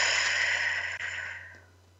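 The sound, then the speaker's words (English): A long, steady breath pushed out through the mouth as if through a straw during a calming breathing exercise, a soft airy hiss that gradually fades away over about two seconds, alone with a faint low hum underneath. “Out through the mouth.”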